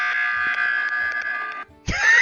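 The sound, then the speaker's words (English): The emergency buzzer from the video game Among Us: a loud, sustained, harsh tonal drone lasting over a second and a half, a brief pause, then a burst of sweeping, rising electronic tones. “It was the buzzer from Among Us.”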